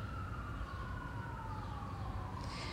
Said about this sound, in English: Sorry, guys, I'm in New York, so if you hear the sirens